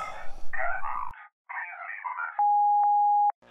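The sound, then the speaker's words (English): A telephone line tone: two warbling electronic bursts, then a loud, steady pure beep holding for about a second, bracketed by faint clicks. No one speaks. “I wish I was never going to hear a phone again. That phone.”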